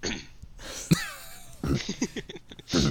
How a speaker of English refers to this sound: I got a cough. I gotta go get that checked out.